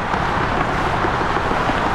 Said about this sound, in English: Looking over I-40, I watch cars, trucks, and the occasional RV speed by.